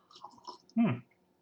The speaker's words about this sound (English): I'm going to have myself a nice glass of ice cold water. I'll sip here. Here we go.